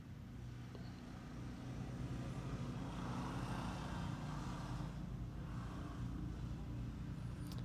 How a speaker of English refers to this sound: Couple motorcycles going by.